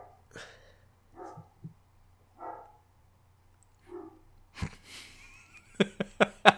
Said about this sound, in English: Let's wait, I can still hear him barking.